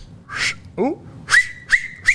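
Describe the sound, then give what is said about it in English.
A few short, shrill whistles blown with fingers, each a sharp sustained tone, coming in quick bursts after breathy attempts; loud. “I can do it with the finger.”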